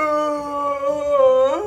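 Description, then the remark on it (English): A blue whale's loud, drawn-out tonal moan, holding steady and then bending upward at the end of a single call lasting under two seconds, with no one talking over it. “Oh God, it talks. Yes, and it is just... loud.”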